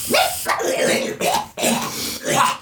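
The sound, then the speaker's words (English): A man's voice imitates a creature's hacking cough as it is hit by a puff of green poison gas and coughs up a big black glob: four or five rough, loud, guttural bursts in quick succession, with no other sounds. “And he coughs up like a giant black goober as he takes 5 damage.”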